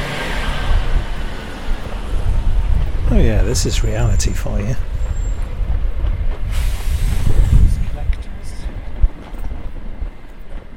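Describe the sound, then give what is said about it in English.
A heavy refuse collection lorry rumbles past, its deep engine noise loud throughout and swelling as it passes, while a person speaks briefly over it on a street. “Yes, a refuse collector lorry just goes past.”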